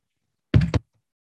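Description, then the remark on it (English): A quick cluster of hollow knocks on a wooden box, three raps in under half a second, fairly loud, with silence on either side. “I'm knocking on heaven, but it's not the door of heaven. I'm already in heaven. It's a box.”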